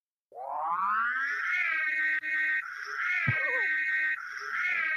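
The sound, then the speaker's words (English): The Ghostbusters siren sound effect, used as a spoiler alert, wails upward from a low pitch, then holds a steady, loud, harmonic-rich tone for several seconds, with a couple of brief dips and no talking. “It's the Ghostbuster siren.”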